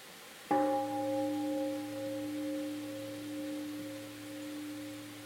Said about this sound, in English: Every time we hear the sound of the bell, we have a chance to practice mindful breathing and stopping our thinking. The practice of listening to the bell can be a very deep practice.